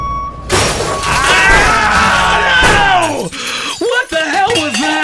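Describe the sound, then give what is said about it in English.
A sudden, loud crash as a vehicle smashes through a kitchen wall and into bunk beds, with shattering and breaking debris lasting a few seconds while people scream, followed by agitated voices. “I don't know, but it looks like it just crashed through the kitchen and into our bunk beds.”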